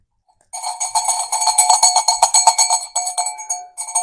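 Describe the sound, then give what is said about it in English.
A small bell, rung as the signal to turn the page, is rung rapidly and continuously for about three seconds, giving a bright, high, clanging jingle, then pauses briefly and starts ringing again. No one speaks. “That's the bell that we ring in order to turn the page.”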